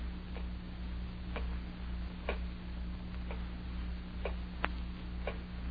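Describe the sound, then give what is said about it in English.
A clock ticks steadily, about once a second, with sharp, fairly quiet clicks over a constant low hum. No one speaks. “Terrible clock.”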